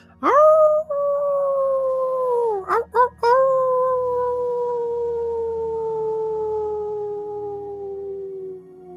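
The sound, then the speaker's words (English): A person howls like a wolf: a long howl rises and holds, wavers briefly after a couple of seconds, then slides slowly downward for several seconds, loud over a faint low drone. “You howl again once more.”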